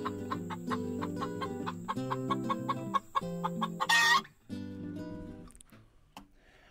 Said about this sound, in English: And more chickens.